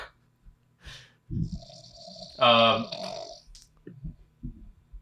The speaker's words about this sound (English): He's snoring. Can you hear that? Is it a good snore?